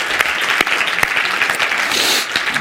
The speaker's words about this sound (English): Put your hands together and give the Lord a hand clap of praise right now.